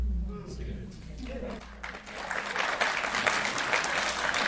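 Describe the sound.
An audience breaks into steady applause, a dense patter of many hands clapping that swells and holds loud to the end, following a brief stretch of a voice murmuring at the start.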